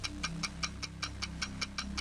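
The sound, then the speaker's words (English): A game show countdown clock set to 45 seconds ticks steadily, about ten crisp, evenly spaced ticks roughly five per second, over a low, sustained musical drone with no one speaking. “45 seconds are on the clock.”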